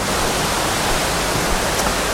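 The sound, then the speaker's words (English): Steady, dense rushing of flowing water, like a stream or small cascade, fairly loud, continuous without pauses or changes for the whole stretch, as a dog cools off in the water on a very warm day. No voices. “I'm just letting him cool down in the water a bit because it is really warm today.”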